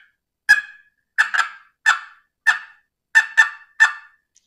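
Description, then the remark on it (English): A box call makes a series of seven short, sharp hen turkey clucks for turkey hunting, some coming in quick pairs, loud with silence between them. “You can do some clucks.”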